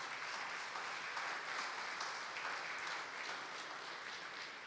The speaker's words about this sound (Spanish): Si lo creen, dar un aplauso fuerte, Señor.